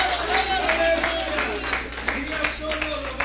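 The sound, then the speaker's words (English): A church audience claps their hands in praise to God in a dense, continuous patter of overlapping claps, with sustained musical tones and murmuring voices running underneath throughout. “Why don't we give God a praise, a hand clap?”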